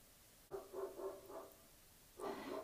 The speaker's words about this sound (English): Dogs barking.